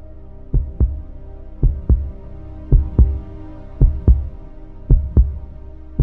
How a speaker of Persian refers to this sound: من شروع کرد قلبم دنگ و دنگ زدن و زیر برقم عرق سرد ریختن.